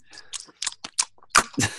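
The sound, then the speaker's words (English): Loud crunching of ice cubes being chewed: a quick run of sharp, brittle crackles in an uneven rhythm, ending with two heavier crunches. “I love ice.”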